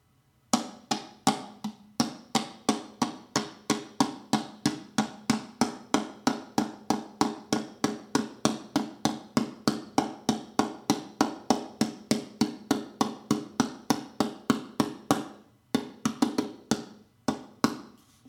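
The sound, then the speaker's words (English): Someone taps the bottom of an 8-ounce plastic drinking water bottle in a steady, quick rhythm, roughly fifty hollow knocks with a short break near the end. No one speaks. “And now I'm going to tap the bottom.”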